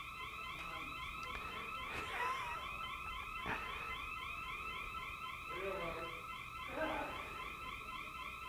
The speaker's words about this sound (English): You caused the alarm to go off.